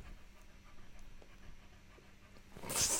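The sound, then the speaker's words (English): A dog, held up and struggling near a chicken, pants softly and steadily, ending in a sudden loud, breathy burst of noise in the final half-second. No one speaks. “Dog and chicken, not a good combination.”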